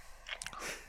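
Crisp sounds of someone biting and chewing a McRib sandwich: a few quick crunchy bites followed by a longer, wetter chewing noise, with no talking.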